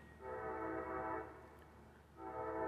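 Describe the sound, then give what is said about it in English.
A train horn blares in sustained, harmonic blasts, sounding twice with a brief dip between, over the low rumble of a passing train. “this train is really getting on my nerves in the background.”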